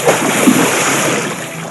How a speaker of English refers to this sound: As she splashed in her pool, she wondered what Nemo was doing. Cannonball!